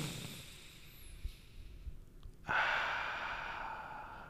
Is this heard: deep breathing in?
yes